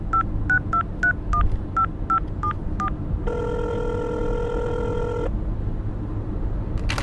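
telephone number being dialed

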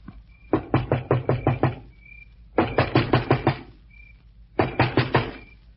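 knocking on a door

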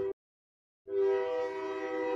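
passing train horn

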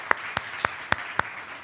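audience applause

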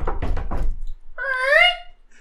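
knocking on a door

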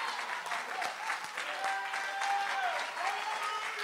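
audience applauding

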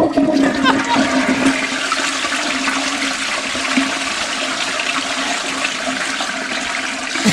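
toilet flushing

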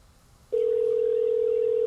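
phone call ringing

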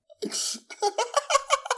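sneeze

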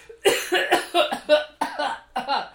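coughing

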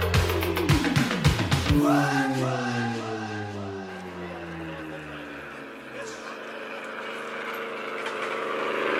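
airplane engine

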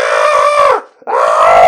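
man screaming in frustration

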